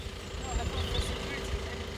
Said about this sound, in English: keeping her distance, engine still running. I don't think you should idle, Mum, like this.